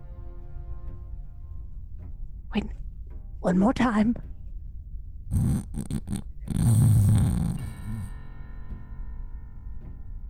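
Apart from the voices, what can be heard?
person snoring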